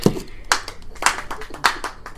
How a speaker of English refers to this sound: Was that your doorbell? No, I think it was me clapping.